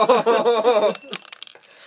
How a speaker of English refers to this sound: is pouring the Honey Nut Cheerios into her mason jar of wine. It's a Smucker's jar.